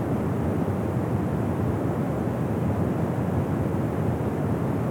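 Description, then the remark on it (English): A steady, powerful roar of the Dettifoss waterfall, its water falling at large volume: dense low rumble with a broad hiss on top, unbroken and loud for the whole stretch, with no voices. “Its water falling at such a large volume.”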